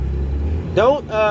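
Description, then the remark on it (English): A short, light car horn honk from the smaller of the car's two horns, a single steady tone given to warn two vehicles about to hit each other, sounds over a low engine rumble. It follows right after a brief vocal exclamation. “If y'all heard that little teeny honk, I didn't hit my big horn. I hit the little small one just to kind of like...”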